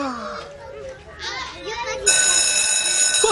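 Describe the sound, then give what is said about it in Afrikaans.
Children's voices chatter briefly, then a school bell starts ringing loudly and continuously, a steady bright electric ring that holds to the end with the kids still faintly audible beneath it. “Hoor, daar lui die skoolklok nou net.”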